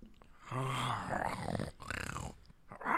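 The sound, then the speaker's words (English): People imitate TikTok-style growls with their voices, a few rough, throaty bursts overlapping one another, fairly loud, with brief gaps between them and no real words spoken. “No, let's all give our best TikTok growl.”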